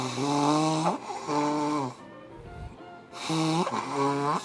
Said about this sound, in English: Dude, how many times are you going to blow your fucking nose, man?